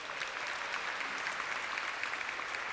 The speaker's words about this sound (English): I think we deserve a round of applause.